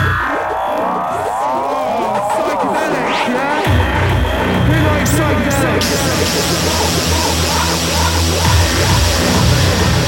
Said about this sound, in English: Oh, that's a Hoover sound, isn't it?